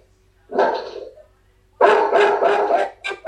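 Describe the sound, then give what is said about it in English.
A watchdog named Odie barks and yelps loudly at someone making a delivery, in a few harsh bursts: one short bark, a pause, then a longer string of rapid, agitated barks ending in two clipped yaps. “Odie, come here. Come here. No, we're meditating. It'll just be a minute, there's a delivery.”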